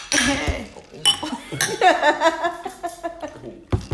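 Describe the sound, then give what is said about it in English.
Glasses clink together in a toast, several bright chimes ringing out over a few seconds amid light chatter and a bit of laughter. “So cheers.”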